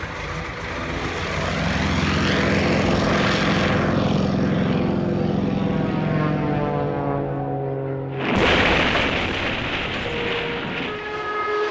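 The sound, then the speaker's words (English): A propeller airplane engine drones loudly and steadily, its pitch slowly sliding as it passes by, then the roar abruptly shifts to a harsher, brighter tone near the end. “Elizabeth Robinson, winner of the Women's Sprinting Championship in the Olympic Games in Amsterdam in 1928, was critically injured today in an airplane crash here.”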